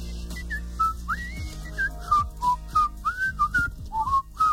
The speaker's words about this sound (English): We were all in here whistling.